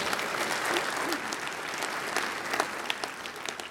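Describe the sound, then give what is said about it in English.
A church audience applauding steadily during a morning worship service, a dense patter of many hands clapping at an even level with no single voice standing out, sustained for a few seconds. “so give Judy a big round of applause as well.”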